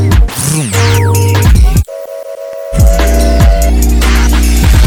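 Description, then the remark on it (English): A loud train whistle sounds in layered, sustained tones, with pitch sweeps early on, a brief steady higher blast in the middle, and a deep rumbling hum beneath throughout. No one speaks. “Keep an eye out for that lucky train.”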